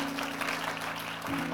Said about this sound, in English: And come on, let's give a round of applause.